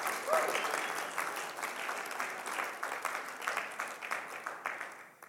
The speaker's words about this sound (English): Thank you, worship team. Let's give the worship team a nice big clap offering for what they've done.